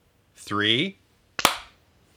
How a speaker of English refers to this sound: Maybe they were just so in sync that you just thought you were hearing you clap. That's amazing. But it was me clapping. Oh, it's the sound of four hands clapping.